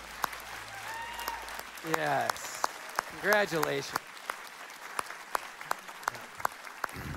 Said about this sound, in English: So, church, can we just give them a round of applause for this? Yeah.